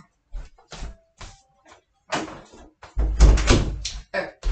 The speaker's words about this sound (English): Okay, so let me tell you, hang on, let me shut my door back.